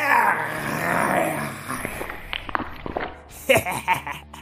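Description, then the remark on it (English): A loud, rasping roar from a winged dragon landing in a field of horses, zebras, Appaloosas and pegasi and spitting black goo into the sky rumbles for about two seconds, then gives way to scattered clicks and thumps and a brief, growly vocal burst near the end. “The winged thing landed in the middle of the field of horses and zebras and Appaloosas and Pegasi and roared loudly as it spat black goo up into the sky.”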